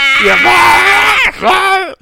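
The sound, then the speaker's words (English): A person mimics a deer with two loud, nasal bleating calls, a long wavering one and then a shorter one that rises and falls, with no other sound. “He comes in, and what kind of noises do deers make?”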